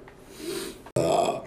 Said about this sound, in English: Hasn't been a lot of burping in this one. A lot of burping and farting and shit.